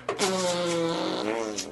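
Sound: fart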